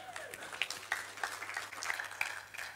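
An audience gives a round of applause for a volunteer who brought over a table: a soft, steady patter of many hands clapping for a few seconds, with a few faint higher pings mixed in and no one talking.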